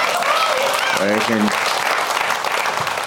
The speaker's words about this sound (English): You could have clapped for us after a couple answers. That was a dick move.